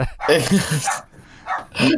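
A speaker's dog barks and yips in the background in a cluster of sharp, loud bursts, pauses briefly, then lets out two more quick barks.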